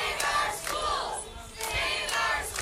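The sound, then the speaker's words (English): A crowd of protesters at a Saturday rally against $5.7 billion in state school aid cuts chants together in rising and falling bursts, many voices blending into a loud, steady roar with rhythmic swells. “Hundreds turned out Saturday in cities across the state to protest $5.7 billion in cuts to school aid, joining rallies and car caravans in Buffalo, Rochester, Utica, Albany, and Kingston.”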